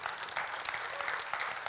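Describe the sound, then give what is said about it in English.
A church audience applauds two people getting baptized during the service, a steady, dense patter of many hands clapping at an even, moderate loudness with no one speaking over it. “This service, two more people are getting baptized. Yeah, you can clap, that's fine.”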